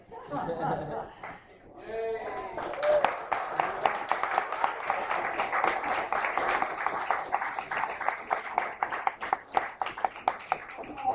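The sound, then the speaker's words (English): An audience at an evening talk with speakers breaks into sustained applause after a brief burst of voices and cheering, the dense clapping steady, with occasional louder individual claps standing out. “For our speakers tonight, but can we have another round of applause for all the folks that took so much effort into saving the paper?”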